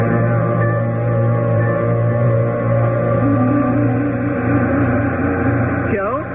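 A large transport craft, the big trans train, lands on planet Vivian, its engines droning in a deep, steady rumble layered with humming tones, holding loud throughout before a brief warbling whine sweeps through near the end.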